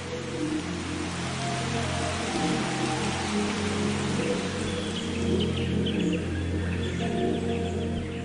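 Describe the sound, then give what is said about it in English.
Steady rain patters down on leaves and wet dirt, a dense, even hiss of drops that stays constant throughout, with faint bird calls chirping. No one speaks. “He fell asleep in the wet dirt and leaves, the rain pattering down.”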